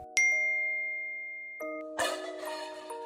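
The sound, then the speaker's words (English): A doorbell chimes with a ringing tone that slowly fades, then sounds again, followed by a louder, busier burst of chiming and rattling near the end. No one speaks. “And now someone is ringing my doorbell and texting me they see me.”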